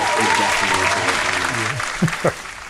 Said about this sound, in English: This will be a lot of applause right here.